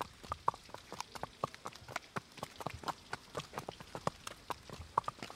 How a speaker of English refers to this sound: On a cold and damp night on September in 1810, the sound of many hurried footsteps echoed the wet cobblestone streets of the little colonial town of Dolores in the province of Real de Minas de Guanajuato.